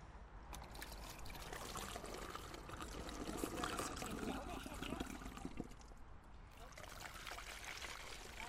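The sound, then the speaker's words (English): Water pours steadily into a bottle rocket to fill it about half full, a continuous trickling and gurgling that stays fairly even in loudness before easing slightly near the end. “Nah, we're going to use water and we're going to use something else, but we'll put the water inside them first of all.”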